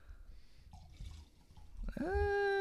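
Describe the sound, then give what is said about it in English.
Cranberry juice is poured into a glass, a short gurgling stream that turns into a rising, ringing tone as the glass fills, after some faint handling noise. “You have to pour by the mic.”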